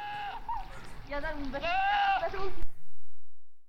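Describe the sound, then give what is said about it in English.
A goat bleats, a short call followed by a longer, wavering, nasal cry that quivers before cutting off abruptly into silence. “What's the answer? That is a goat.”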